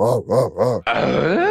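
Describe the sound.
A voice imitates a motor revving up: three short rising-and-falling grunts, then a sustained gritty, buzzing engine roar that climbs in pitch toward the end, fairly loud and with no speech.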